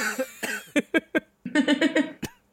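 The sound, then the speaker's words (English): A burst of harsh coughing: several sharp hacks in quick succession, then a rapid run of rough, choking coughs and a final wheezy gasp, with no one speaking. “Are you crying or coughing? A bit of both.”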